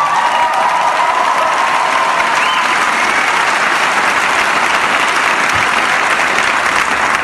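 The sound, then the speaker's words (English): Loud, sustained applause from a large audience at an evening charity event, applauding themselves for taking part in the evening's activities; a dense steady roar of clapping with some cheering mixed in, unbroken from start to finish. “And as I already mentioned, a round of applause to yourselves for taking part in this evening's activities, because you have together raised a huge amount of money to change the lives of thousands of children in Botswana.”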